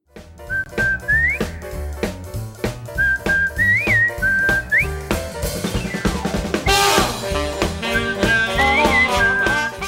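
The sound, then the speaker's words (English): A cheerful whistled tune carries the melody of a cartoon's theme song over a bouncy, full band backing with steady drums, loud, with no one talking. “I want to talk about the theme song just so I have an excuse to put the theme song, a clip of the theme song here in the show.”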